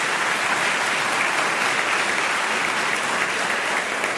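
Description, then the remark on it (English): An audience at an evening debate event applauds the people who asked questions, a dense, even wash of many hands clapping at a constant loud level for several seconds with no voices on top. “So everybody who got up and asked questions, thanks very much for you, and a round of applause for those.”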